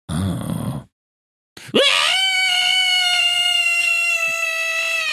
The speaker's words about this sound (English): I scream at the troll. No, he's vulnerable to blue hedgehogs. How'd you make that noise with your mouth? That wasn't my mouth. Pinch tight, squeeze, and push. All in one motion.